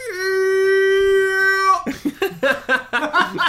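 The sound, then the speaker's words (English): A voice imitates a scary scarecrow scream, used in a video game whenever something makes a scary noise: a loud, steady, high-pitched wail held for nearly two seconds, then cut off abruptly as rapid talking follows. “And so it's like, what would a scary scarecrow sound like? And I went, because like it cut off my, you can't scream for too long.”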